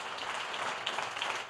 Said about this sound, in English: Give our friends from the Pacific Northwest a big hand clap.